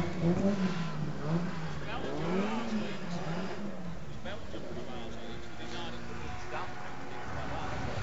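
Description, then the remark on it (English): Race car number 88 drones as it comes back into the pits for a pit stop, its pitch rising and falling as it slows and revs, with indistinct voices and busy background noise underneath. “Car 88's come back in again.”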